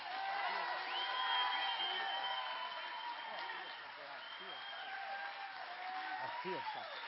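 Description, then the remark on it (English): A crowd claps and shouts together during a church revival worship service, a continuous wash of applause with cheering voices rising above it, steady and loud for the whole stretch. “Okay, clap your hands. Come on, keep clapping. Keep shouting.”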